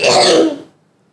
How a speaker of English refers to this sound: Sorry, I've been trying to keep quiet. So now I'm just letting out all my coughs while also trying to commentate.